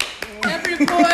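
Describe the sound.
About five sharp claps land at a quick, fairly steady pace, sounding like a few people applauding, with voices carrying on underneath at moderate loudness.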